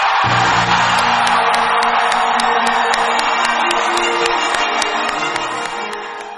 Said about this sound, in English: The crowd went crazy.